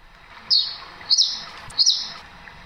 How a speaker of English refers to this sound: It sounds like a rainforest. You can hear the peaceful twittering of birds in the trees above and the gentle flow of water from a stream nearby. You can almost hear the humidity in the air. But none of this is real.